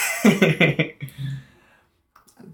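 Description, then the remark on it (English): A short fit of coughing: about four quick, harsh bursts in a row, followed by a lower, throaty rasp that trails off into quiet, with a faint click near the end. “Do we need to get you a cough drop?”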